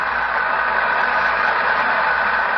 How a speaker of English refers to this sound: Listen to the applause. Yes, undoubtedly she'll sing an encore.